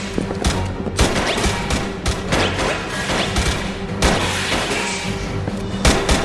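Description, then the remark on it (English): A dense firefight with rapid, overlapping gunshots cracking out continuously, mixed with heavier booms, loud throughout with no pause. “Oh, a nice little firefight mixture of, again, there's gunfire going on, but it...”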